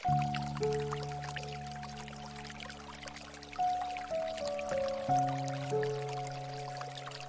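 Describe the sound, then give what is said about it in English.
Gentle dripping and trickling water runs steadily beneath slow, sustained 432 Hertz piano chords that change every second or so, all soft and calm with no voices, played as meditation music. “Embrace the sense of inner bliss and happiness that arises from connecting with the harmonious power of 432 Hertz piano and water sounds.”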